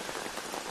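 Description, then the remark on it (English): Steady rain patters on a hard surface in a dense, even hiss with fine crackling drops, fairly soft, with no voices, falling during a drive from Scarborough to Sandbanks along the 401. “But it did not stop raining the whole way.”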